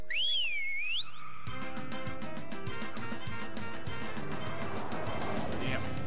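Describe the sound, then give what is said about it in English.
A loud, wavering whistle glides up and down for about a second. It cuts off, and a dense, busy burst of music-like noise with rapid clicking takes over for the rest. “Is it you always whistle when I'm in the middle of a shampoo?”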